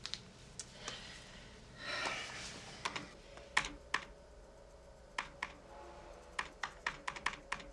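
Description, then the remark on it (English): Quick, crisp keystrokes on a computer keyboard tap out in irregular bursts, with a brief breathy whoosh early on and a faint steady hum underneath. No one speaks. “Just use the keyboard.”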